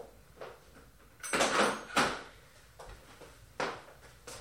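A door is opened for a cat: a sharp rattling clunk and a scraping sweep, then a lighter knock about two seconds later, with no talking.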